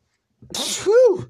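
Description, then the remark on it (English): A single sharp sneeze: a hissing burst of breath followed by a voiced, rising-then-falling 'choo' tail, fairly loud, with no talking around it. “Ooh, sneezed.”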